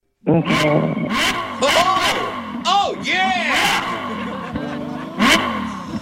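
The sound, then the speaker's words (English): A motorcycle engine revs up and down in several rising and falling bursts, loud, while voices exclaim briefly over it. “I mean, yeah, it sounds like a motorcycle.”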